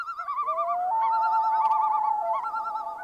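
Loon calls, put into an audio edit to mean night: long, wavering, warbling tones that rise and hold, overlapping one another in a steady chorus for about three seconds, with no talking.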